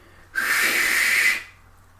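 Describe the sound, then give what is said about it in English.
A single long, forceful hiss of breath pushed through clenched teeth, lasting about a second, fairly loud, with a faint whistling edge and no talking. “That wasn't a whistle. Just breathing.”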